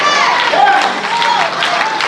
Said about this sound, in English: I just need 10 of you that can clap their hands if you got crazy faith today and shout, I still believe God.